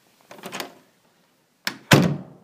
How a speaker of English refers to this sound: And then the door opened and my third option walked through the door. My problem had actually come to me.